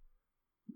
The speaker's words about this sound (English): Oh, hey, there was a burp. How'd it taste? It tasted like a giant air bubble.